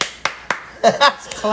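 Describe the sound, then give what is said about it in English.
A few crisp hand claps ring out, three quick ones in a row and one more a bit later, with a voice vocalizing briefly in between. “Claps to that.”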